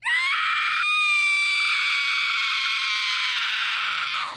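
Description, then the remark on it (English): A single blood-curdling death scream from a video game raid character, shrill and piercing, held loud and steady for over four seconds before trailing off at the end. No talking, just the scream alone. “It's just blood-curdling scream, dude.”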